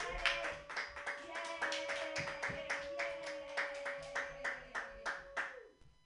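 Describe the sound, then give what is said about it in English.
A small audience claps for themselves together in a quick, fairly steady rhythm for several seconds, the sharp hand slaps layered over a sustained droning tone before fading out at the end. “Clap for yourselves.”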